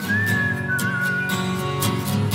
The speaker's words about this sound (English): He's actually doing the whistling. Check it out.